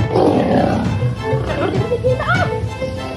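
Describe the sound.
A lion at the Jamaica Zoo in St. Elizabeth, disturbed through the fence by a zoo worker, growls and roars in deep, rumbling bursts, with harsher snarls rising toward the end, while people's voices chatter in the background.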